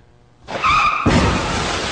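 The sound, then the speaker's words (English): A loud tire screech lasts about half a second, then cuts into a harsh, noisy car crash sound effect that roars on to the end, played to signal that a comedian's joke did not go over well. There is no talking. “they will hear the car crash, as okay. indicated by this.”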